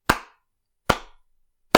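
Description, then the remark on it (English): Three slow, evenly spaced hand claps, sharp, each ringing briefly before the next, like a lone person giving sarcastic applause. No voices. “So let's all have that big round of applause.”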